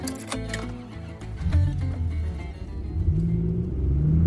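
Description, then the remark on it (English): A few brief clunks give way to a car engine rumbling low and steadily gaining power as it accelerates, heading south on US 49 towards Jackson, its deep drone growing louder toward the end, with no talking. “It's time to hop back in our car and head southbound on US 49 towards Jackson.”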